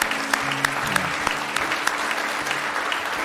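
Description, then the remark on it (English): An audience gives a clap out for those who may have just prayed a prayer for the first time, many hands clapping in a dense, continuous patter with a few sharper claps standing out, along with faint low tonal sounds underneath. “Can we have a clap out for those who may have just prayed that prayer for the first time?”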